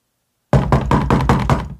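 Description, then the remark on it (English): Five sharp knocks on a door in a quick, even rhythm after a moment of silence, each strike loud and solid with a hollow wooden thump. “Oh, come in. How may I help you?”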